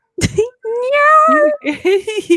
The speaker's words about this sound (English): He sounds like he's Australian. Australian cat.